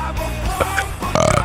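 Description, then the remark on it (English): A long, loud burp with a rough, croaking texture that rises and gurgles toward the end, heard alone with no talking. “Sorry, I had to get one more burp in there before I left.”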